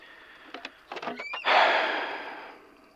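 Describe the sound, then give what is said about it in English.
A door is pulled shut: a few soft clicks and a short squeaky creak, then a firm thud with a bit of ringing that fades over the next second. No one speaks. “Do you mind closing the door?”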